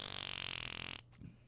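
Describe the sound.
A single buzzy, fluttering fart noise blown with the mouth lasts about a second, loud, then cuts off abruptly into near silence with a faint breathy trailing sound.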